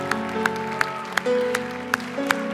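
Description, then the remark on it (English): An audience claps in a steady, even rhythm, roughly three claps per second, giving the Lord an applause, over sustained keyboard or organ chords, with no talking. “Give the Lord an applause.”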